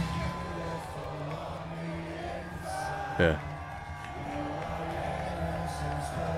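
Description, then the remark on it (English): A large crowd at a wrestling show held on a cruise sings along to a wrestler's entrance theme song, voices blending into a loud, steady roar over the music, with one brief shout cutting through near the middle. “You can hear the crowd singing along the lyrics to his theme song.”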